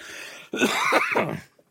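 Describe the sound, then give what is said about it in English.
A loud, rasping throat clearing and cough into a corner bursts out, lasting about a second after a brief quiet lead-in, then stopping abruptly with no talking. “Right, I'm going to go off and cough into the corner really loudly before I'm not.”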